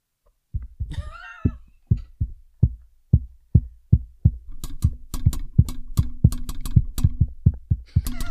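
Tapping out Morse code to make a case in a vote for a music video: a run of dull, low thumps at a steady pace, then quicker, uneven taps layered with sharper clicks, with a brief high squeal near the start.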